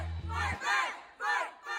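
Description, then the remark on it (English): Protesters, organizers from the Youth Justice Coalition and other groups, shout the chant "Free our youth and shut it down" in unison at an LA County Board of Supervisors meeting in downtown LA: loud rhythmic bursts of many voices rising and falling, with a brief low hum at the start. “Organizers from the Youth Justice Coalition and other groups stood up and began shouting, "Free our youth and shut it down."”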